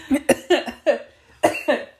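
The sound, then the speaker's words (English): A fairly loud fit of about six sharp coughs brought on by laughing comes in two uneven clusters, each burst harsh and breathy with a quick decay and a brief pause between the groups. “Coughing. So sorry, I started kind of laughing when you said that the same pregnancy symptoms and depression symptoms are like the same thing.”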